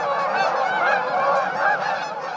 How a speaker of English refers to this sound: The syncopated honks of Canada geese are among nature's definitive heralds of autumn migration. As V-shaped flocks of geese fly south, millions of Canada geese migrate each year.